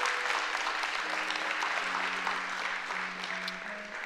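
An audience gives the Lord a hand clap, clapping steadily in a dense, continuous wash of applause, with sustained organ-like tones rising underneath partway through.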